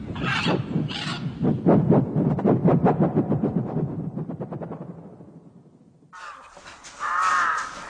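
A large bird caws loudly, a run of harsh, rapid calls that fade slightly before one more raspy squawk near the end. No one speaks.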